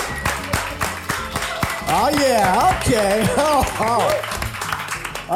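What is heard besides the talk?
audience slow clap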